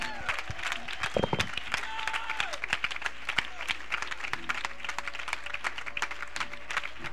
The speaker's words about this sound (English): Clap your hands and give it praise.